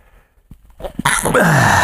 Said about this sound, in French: On va éternuer. Qu'est-ce qu'on fait quand on veut éternuer? On regarde la lumière.